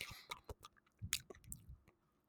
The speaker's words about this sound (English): Oh yeah, building up that saliva in your mouth is the best, because then you can use that saliva to your favor and your benefit while you're ASMRing this beachness.